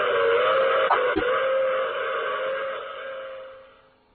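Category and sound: vehicle, train with steam whistle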